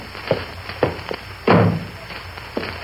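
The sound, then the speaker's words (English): A few soft wooden thunks are followed by a heavier, low thud as a door swings shut, then one more light knock. No one speaks. “Won't you please shut my door again?”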